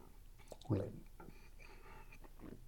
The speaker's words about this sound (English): All right, let's take a sip. All right, one more.